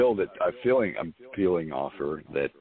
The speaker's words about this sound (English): You're talking. It's just echoey.